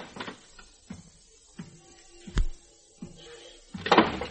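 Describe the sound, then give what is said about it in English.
A door in a suite opens with a few soft clicks and knocks, a sharp thud partway through, and a brief rustling burst at the end as a man enters the room. No one speaks. “Now the clouds were beginning to lift, and at the same time, the door opened in the suite and the silhouetted figure of a man entered the room.”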